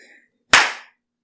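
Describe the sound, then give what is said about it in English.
A single sharp hand clap, made to shoo a pet away, rings out loud and abrupt with a quick decay, after a faint murmur of background noise that fades to silence. “Man, normally he just goes away when I clap.”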